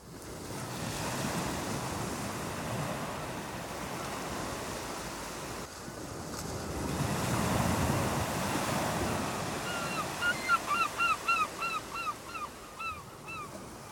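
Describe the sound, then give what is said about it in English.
Steady ocean surf at a beach rushes and swells, building to a louder wash midway, while a series of about ten goose-like honks ring out in quick succession near the end. “The waves gently rocked them, and they smiled at each other.”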